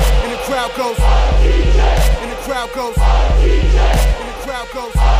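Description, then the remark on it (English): A loud, dense roar of crowd cheering with rising whoops and shouts, backed by a steady, pounding low rhythm that keeps going for about five seconds without letting up. “Step into the spotlight. And the crowd goes.”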